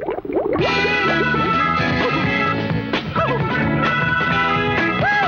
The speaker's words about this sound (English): played an F add 9, but on a Gibson acoustic 6 string.